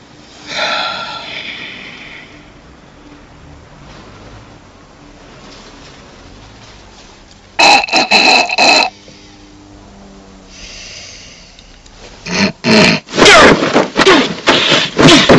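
Loud nasal snorting to clear the sinuses: one quick cluster of harsh snorts, a pause, then a longer run of forceful, rapid snorts in repeated bursts.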